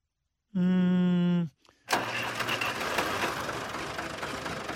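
A tractor engine cranks with a steady, droning whine for about a second, gives a brief clunk, then catches and settles into a loud, rough, continuous rumble.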